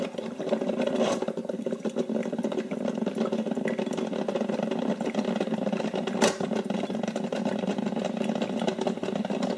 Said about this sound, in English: The sound of the water slowly being heated. And then that crackling, squishing sound of the water mixing and beginning to fill the coffee pot.